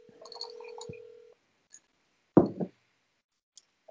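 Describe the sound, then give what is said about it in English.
A phone-a-friend call rings once with a steady electronic tone of just over a second, then goes quiet. A dull knock follows, with no one answering and no voices. “Oh my god, he's not gonna pick up.”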